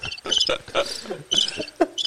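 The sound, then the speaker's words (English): A cricket chirps in a quick series of shrill, pulsing bursts with brief gaps between them, clear with no talking. “That was a cricket, bro. That was a cricket.”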